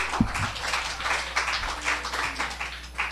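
An audience applauds, many hands clapping in a dense, steady patter that stays fairly loud for the whole stretch, with a few low thumps near the start and no one talking.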